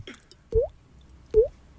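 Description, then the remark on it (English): Two wet, plopping drip sounds made with the mouth as an impression of a dripping tap, each a quick rising pop, spaced about a second apart against a quiet background. “let's hear your dripping tap”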